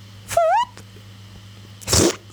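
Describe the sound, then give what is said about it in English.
A short, squeaky fart noise with a wavering rising pitch, then a brief pause and a second, breathier sputtering burst. Both are loud, with no talking. “Yeah, you always get that nice fart noise in there.”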